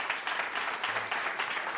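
An audience applauds with steady, dense clapping that holds at an even, moderate loudness throughout, a continuous wash of many hands with no voices over it, answering by applause whether they voted in the 2018 general election.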